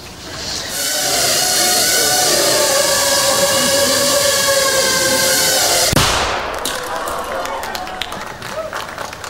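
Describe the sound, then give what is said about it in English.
A steady, high-pitched motor whine from a tiny camera drone holds for several seconds, then one sharp, compact bang from a 3-gram shaped explosive charge cuts it off, leaving faint crackles and rustling afterward. “That little bang is enough to penetrate the skull and destroy the contents.”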